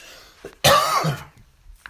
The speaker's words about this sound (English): Pardon me for that. I'm having a coughing fit out of nowhere.